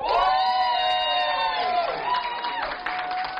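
A loud burst of audience cheering at a launch event on St. Patrick's Day, with sustained high whoops and shouts riding over a wash of crowd noise and clapping, steady for a few seconds before tapering slightly.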